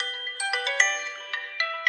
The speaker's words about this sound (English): You guys are supposed to giggle when my phone goes off. All right. That's just Andy and Gay calling from Italy to say they're watching online.